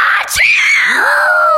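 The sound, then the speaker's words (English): A voice imitates a forceful sneeze for the story character Chloe Chameleon: a sharp, noisy burst followed by a loud, drawn-out vocal tone that slides downward in pitch for over a second before ending. “Let's hear her sneeze.”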